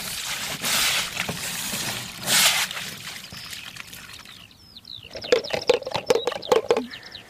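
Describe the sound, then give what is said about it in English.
Water is sluiced out of a pond shaped a bit like a satellite dish in a takahē pen, pouring out in loud, hissing gushes, followed by a quieter stretch of scattered splashes and sharp trickling clicks. “Sluicing out all of the water out of a pond that looks a bit like a satellite dish.”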